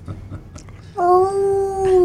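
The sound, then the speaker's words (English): A person imitates a dog's howl: one loud, steady, drawn-out tone held for about a second, following a short stretch of quiet background noise. “You sound more like a dog than my dog sounds like a dog.”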